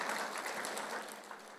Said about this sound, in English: All right, can we give God a clap of praise?